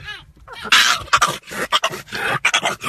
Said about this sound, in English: The first one is these people are fascinated with the weird sounds their dog makes. It's a pug. Oh, okay. Funny dog in the noises. Back. Yeah. It's just a pug making noise.